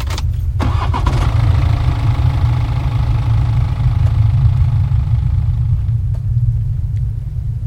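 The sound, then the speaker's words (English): A car engine cranks and catches near the start as the key is turned in the ignition, then settles into a steady, loud low rumble as it idles for several seconds, with no voices. “I slammed his door shut, then dived into the driver's seat, slamming the locks whilst turning the key in the ignition.”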